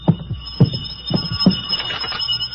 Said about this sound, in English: I could hear the phone ringing from somewhere inside, so I waited to see if anyone answered it. On the third ring, I tried the door.